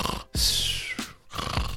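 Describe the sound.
A person imitates snoring with loud, raspy snorts: two long rattling breaths and a brief one between them, with no other talking.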